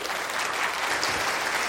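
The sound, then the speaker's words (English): A crowd claps steadily to welcome a speaker, a dense, even wash of applause with no voices rising above it. “Please welcome her with a round of applause, please.”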